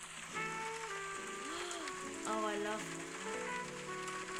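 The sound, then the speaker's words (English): Steady, soft rain patters in the background of a busy coffee shop ambience recording played from a video, with murmuring voices and faint clinks layered over the continuous hiss; someone briefly speaks. “And it gives a little rain in the background.”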